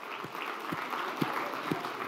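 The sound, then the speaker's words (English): A crowd applauds steadily, a dense wash of clapping with a few louder claps standing out at a regular pulse, sustained at moderate volume throughout with no voices. “So what I'd like you to do is stand up if you guessed it correctly for a round of applause.”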